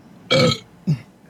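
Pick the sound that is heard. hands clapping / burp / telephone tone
burp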